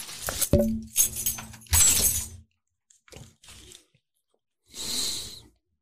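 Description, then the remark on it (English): Keys jingle and clink as they're taken off and handled, in a few loud rustling bursts with brief pauses between, ending in a softer final shuffle. “I was taking my keys off. It was bothering me.”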